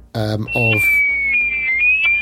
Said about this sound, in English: But you hear on the loudspeaker tannoy from the bridge, you hear second mate … suddenly, and there's that classic kind of high-pitched ear-squealing sound. Ear-squealing, pig-squealing, ear-breaking sound